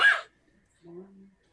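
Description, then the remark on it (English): A single short, harsh cough bursts out, followed after a brief pause by a low voiced grunt; it sounds like a person vocally performing a cough. “And at this point, the blue were-rat, like, very quickly judges its situation and then coughs.”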